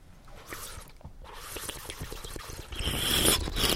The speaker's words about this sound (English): And then I want you to purse your lips, open it just a little bit, and suck some air over the water like this. Like this.